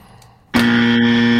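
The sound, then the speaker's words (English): After a moment of near silence, a loud, harsh game-show honk marking a wrong answer in a video game guessing quiz blares out abruptly and holds steady at a low, buzzy pitch through the end, with no voices. “Both of us? Oh. Two honks.”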